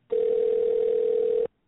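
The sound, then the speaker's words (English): One steady electronic ringing tone sounds over a phone line as a call is placed, lasting about a second and a half, clear, then cuts off. No one speaks. “It's ringing, everybody.”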